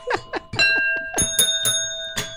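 Bells ring in a quick, steady series of strikes, their bright tones overlapping and sustaining into a shimmering chime, moderately loud with no voices.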